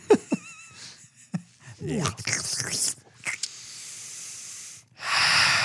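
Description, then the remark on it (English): Someone blows their nose after sneezing: a few short snuffling, snorting bursts, then a long, loud, airy blow that breaks off briefly before a final forceful honk. “Blow my nose after that one.”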